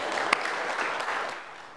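A crowd applauds, a steady wash of many hands clapping at moderate volume that gradually thins and fades toward the end, with no voices over it.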